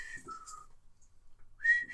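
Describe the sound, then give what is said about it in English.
A breathy, faltering attempt at whistling by someone who cannot whistle: a thin, wavering tone sputters out amid rushing air, stops for about a second, then returns briefly, not very loud. “I can't whistle. I told you this.”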